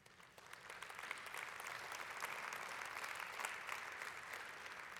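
An audience claps steadily throughout, a dense, continuous patter of many hands at an even loudness with no voices rising above it.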